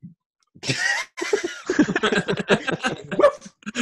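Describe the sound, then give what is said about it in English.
A person loudly imitates a dog's bark, as a werewolf turning into a dog, with a gruff, breathy woof, then keeps talking in an animated voice. “Whereas in that one, they're just like... Woof!”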